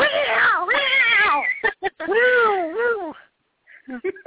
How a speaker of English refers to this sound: I'm sorry, my cat's about to attack me. Does your cat want to get on the line?